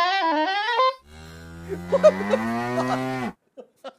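A dog sound effect: a wavering, high whine for about a second, then a long, low, droning howl that swells and cuts off, followed by two faint short taps. No one speaks.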